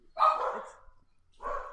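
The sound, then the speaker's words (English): Three dogs barking: a loud, drawn-out bark followed by a shorter one after a brief pause, with no talking over them. “I got three dogs barking in the background.”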